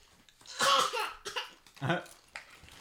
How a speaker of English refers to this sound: Why did I have to yeet myself off screen as I coughed?